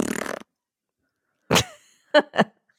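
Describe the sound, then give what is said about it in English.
A fart attributed to a person sounds out in three short, fairly loud bursts: one longer blast followed by two quick pops after a brief pause, with a short rough noise before a moment of silence. “No, that's … farting.”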